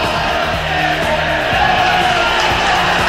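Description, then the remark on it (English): A large football crowd, the Mazuma crowd at the Morecambe v Doncaster Rovers match, roars and cheers continuously at 3-3 with five minutes to go as a corner is taken, a dense, loud wall of voices with rising shouts and whoops, sustained throughout without pause. “Listen to the Mazuma crowd.”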